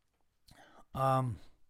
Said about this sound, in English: All right, I'm going to take a sip of my natural flavored or my seltzer, whatever the fuck this is. Hold on.